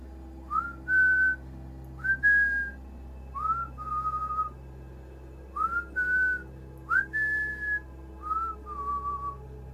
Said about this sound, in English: At exactly 3:03, we heard the whistling.